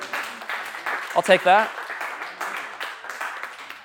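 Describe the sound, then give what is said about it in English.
An audience claps steadily in a dense, crackling patter that runs the whole time, while a man speaks briefly over it. “No need to keep going on after a clap.”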